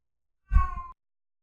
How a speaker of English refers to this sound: Oh, this freaking cat. Shut up, please.